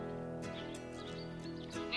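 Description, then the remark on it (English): A goat bleats in a drawn-out, wavering cry lasting a couple of seconds, heard on its own with no talking. “Humans and goats have a long and productive history together.”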